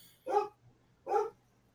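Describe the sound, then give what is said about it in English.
Two loud barks from the speaker's pet dogs, spaced about three-quarters of a second apart, with a faint low hum underneath and no talking. “Sounds like your dogs love the streaming service.”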